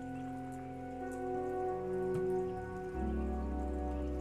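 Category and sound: nature, rain falling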